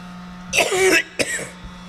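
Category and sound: human body sound, coughing and throat clearing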